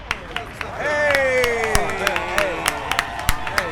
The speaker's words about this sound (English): Clap it up